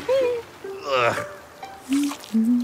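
A short burst of water splashing and sloshing near the middle, surrounded by wordless vocal sounds and tones, moderately loud; a snail having a bath in the rain on a rainy day.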